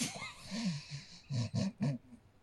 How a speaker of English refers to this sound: You do not yawn into the mic.